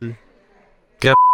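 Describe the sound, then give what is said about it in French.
A short burst of voice gives way to a loud, steady electronic beep, a single pure tone that starts abruptly and holds unbroken until the end. “Le bip est encore, là, pas de pub.”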